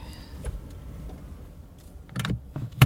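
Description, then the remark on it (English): Inside a car, a hybrid powers on almost silently: a low interior hum, a faint high electronic whine, then a cluster of sharp mechanical clicks and thumps near the end. “Maybe you didn't turn the car on. There you go.”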